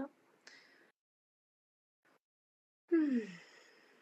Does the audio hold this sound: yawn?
yes